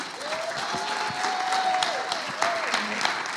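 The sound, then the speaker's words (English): An audience at a church service claps together in a steady, dense burst of applause that holds at an even level, with a few voices calling out faintly over the clapping. “Hey, folks, should we give these guys a clap?”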